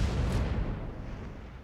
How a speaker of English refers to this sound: As his carriage neared the opera house, there was a massive explosion.